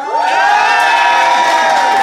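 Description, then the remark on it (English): The assembled audience erupts in loud, sustained cheering and shouting, applauding to vote for the side they think is in the right. A dense wall of voices whoops together for a couple of seconds, with little distinct clapping standing out. “So, the assembled audience, if you think Joe and Ben, and therefore Beth, is in the right, applaud now.”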